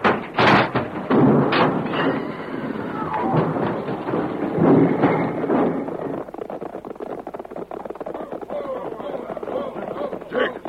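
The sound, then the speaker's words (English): A runaway stagecoach whose brake has failed crashes: loud, heavy thuds and splintering bursts in the first seconds, followed by a steady rumbling clatter of hooves and wheels, with voices mixed into the din. “It's my stage. They pulled it out. I can't stop. The brake. It don't work. We're going to crash.”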